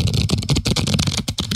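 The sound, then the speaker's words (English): A new deck of cards being shuffled: a steady run of crisp, papery flutters and clicks in quick bursts, fairly loud, with brief pauses between riffles and no voices. “He's shuffling them right now. Shuffle the cards, because, you know, we got to get some good ones here.”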